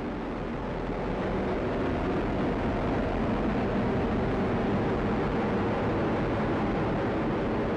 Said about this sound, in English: Coming up on 30 seconds into flight, the RD-180 is throttling down as expected. Engine response looks good. And Mach 1, Atlas 5 is now supersonic. That sound was the Perseverance rover launched by NASA from Cape Canaveral, Florida.